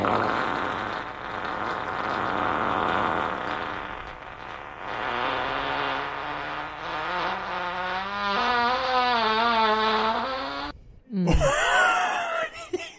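A long, drawn-out fart buzzes steadily for about eleven seconds, its raspy pitch wobbling and climbing toward the end before breaking off into a short, squeaky sputter.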